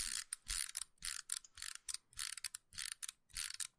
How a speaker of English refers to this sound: That's his, like, cannon hand spinning around, and it... I don't... Why? Oh, I don't know if mine does that.